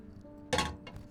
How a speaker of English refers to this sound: Let in the weather, as my boat often lets in the weather, as I reach for my kettle on the grate.